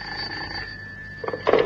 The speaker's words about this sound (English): And then the telephone rang.